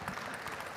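A brief burst of audience applause, with many hands clapping in a dense, steady hiss of overlapping claps at an even loudness and no voices.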